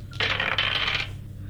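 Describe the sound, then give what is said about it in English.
Dice are rolled and clatter and rattle against a tabletop for about a second, a bright burst of tumbling clicks that quickly settles, with a low steady hum underneath. “My dice, no.”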